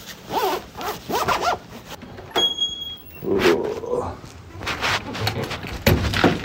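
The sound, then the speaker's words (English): A frozen car door is forced open in cold weather with a few harsh, ripping crackles and thuds. Strained grunting comes before and between the bursts. “Door was frozen.”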